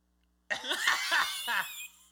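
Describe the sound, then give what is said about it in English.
A senator in the legislative house pulls down his mask and sneezes into his hand right behind a woman who is speaking: a sudden, loud, explosive burst after silence, followed by a few harsh, breathy gasps and sputters before it trails off. “He takes out his mask and he sneezes in his hand.”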